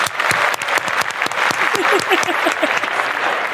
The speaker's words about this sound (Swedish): Jag tycker vi tar en applåd för det också.